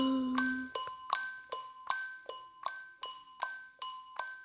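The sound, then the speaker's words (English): Orchestra bells ring with bright, sustained metallic tones while crisp, clock-like ticking made with the tongue repeats in a steady, even rhythm, roughly two or three clicks per second, clear. “I played the orchestra bells and made clock sounds with my tongue.”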